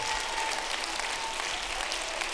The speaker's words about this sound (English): Come on, somebody, clap your hands unto the Lord and shout with a voice of victory.